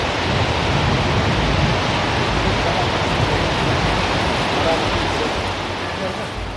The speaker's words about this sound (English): The river seems louder and more ominous than before. As night sets, and we make our way back across the swing bridge. Looking down and seeing a raging river hundreds of feet below will take some getting used to.